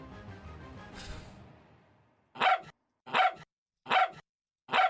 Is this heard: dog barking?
yes